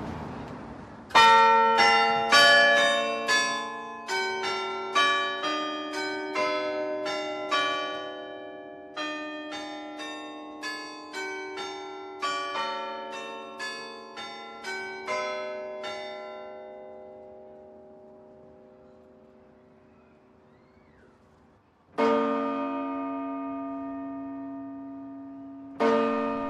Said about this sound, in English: So there's 15 Carillons in the UK, but only 4 of them are of the size of the Bournville Carillon, which has got 48 bells.